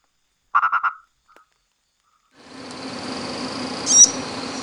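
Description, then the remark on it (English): A purple frog gives a short call of four quick croaking pulses, followed after a brief pause by a steady, dense night chorus of frogs and insects. “Purple frog. Oh, purple frog.”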